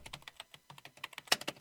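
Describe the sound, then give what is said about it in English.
Rapid, clicky typing on an old computer keyboard, a quick run of irregular keystrokes with one louder clack near the end, with no voices. “Man, that keyboard. That keyboard you type on is so old.”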